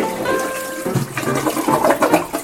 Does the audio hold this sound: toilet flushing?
yes